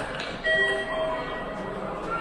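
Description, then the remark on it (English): A train idles at Wakkanai station shortly before its 10:28 departure, a steady mechanical hum with thin, sustained whining tones layered over it, holding constant throughout without breaks. “There's actually a train at the station, which leaves at 10:28. So it's about to leave now.”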